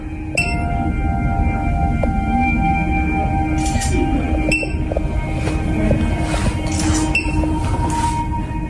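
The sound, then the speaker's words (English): Five sharp camera shutter clicks as photos are taken of a person's face resting on a chin rest, sounding at uneven intervals, each crisp and brief, over a loud, steady mechanical hum with a faint tonal whine. No one speaks. “So it'll be five photos. You'll hear five shutter clicks.”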